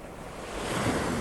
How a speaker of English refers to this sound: You walk a little further along the beach, listening to the waves crashing on the shore and the seabirds making noises as you walk.